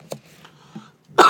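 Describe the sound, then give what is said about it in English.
A brief throat-clearing rasp, then a quiet pause before a sudden loud, harsh cough bursts out from a person recovering from a cold that has moved down into the chest. No talking. “Excuse me, as we can see.”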